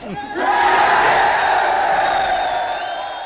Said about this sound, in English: So he laid out the plan, and everyone's cheering. So the reaction was, okay, we're in.